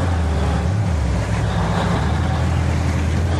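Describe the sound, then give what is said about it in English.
A police RV drives steadily along, its deep engine rumble and road noise filling the scene at a loud, constant level without pause. No one speaks. “The police have themselves an RV.”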